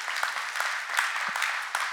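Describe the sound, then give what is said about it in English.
A church audience claps together in steady, dense applause, many hands sounding at once, continuous and moderately loud with no voices standing out. “You can give a clap for that.”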